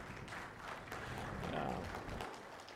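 An audience claps steadily for a few seconds, a dense, even wash of many hands at moderate loudness that carries through without any talking.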